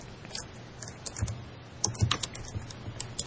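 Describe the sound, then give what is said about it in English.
Rapid, irregular clicking of keys on a computer keyboard, moderately loud, with bursts of quick taps and brief pauses over a faint low hum; no one speaks. “Don't worry, we can't hear you typing.”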